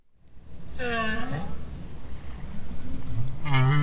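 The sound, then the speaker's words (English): A North Atlantic right whale, a highly endangered species, calls twice, long rising and falling moans with rich harmonics, over a steady low underwater rumble. “That's a North Atlantic right whale.”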